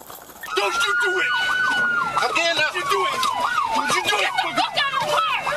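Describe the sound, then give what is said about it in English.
A police car siren wails loudly, its pitch sweeping rapidly up and down in a fast yelp pattern over a steady high tone, continuing throughout. “10-3, yes, our police car! Vehicle 15!”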